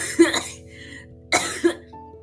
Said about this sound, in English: Like, every year, it's the same as every year, just that now I keep on coughing. I keep on coughing and there's more assignments.